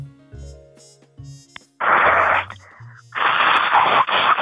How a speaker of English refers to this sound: Hello, are you blowing your nose? Yeah, I am.